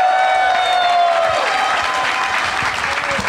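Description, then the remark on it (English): A studio audience bursts into sustained applause for first-time guest, comedian Nate Bargatze: dense steady clapping mixed with a few whoops and cheers, loud and even for the whole few seconds, with a brief high whistle-like tone fading early on. “So let's hear it, everybody, for first time guest Nate Bargatze is here.”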